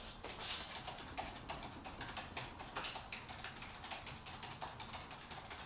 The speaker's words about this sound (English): my keyboard is super noisy. Like, I feel bad for typing on it, because it's like, like, listen to this.